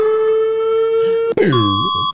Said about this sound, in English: Rating EAS Alarms Part 3. Netherlands.